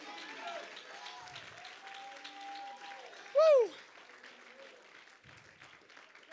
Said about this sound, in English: Oh, one more time, clap your hands to the Lord and say, I love you, Jesus.